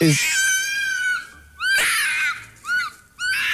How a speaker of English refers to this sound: Damn. Is that what foxes sound like? Yeah, that's the sound that they make when they're mating. Oh! Oh, that sounds rough.